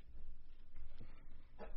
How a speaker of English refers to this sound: Bless you. What's the time on that? 5:05. Oh, what are we, cutting out sneezes now? Yeah, leave that in.